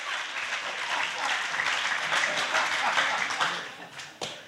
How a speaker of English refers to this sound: Come on, give the Lord a good clap popping out there. Amen.